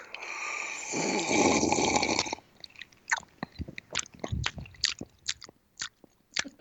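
Ice cubes in a cold brew drink: a loud, rushing sip lasting a couple of seconds, then an irregular run of sharp clinks and crunchy cracks, with no voices.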